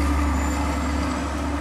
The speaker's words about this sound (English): I apologize for all these trucks.